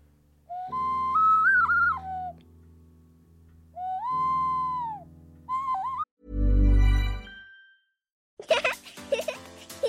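A Spanish clay ocarina plays a short, hooting melody of sustained, breathy mid-pitched notes in three phrases. A low rumbling burst follows, then a different sound begins at the end.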